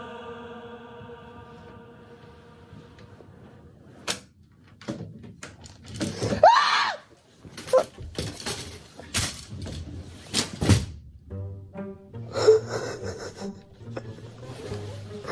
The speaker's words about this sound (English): Like, I know my green screen did not just collapse on me.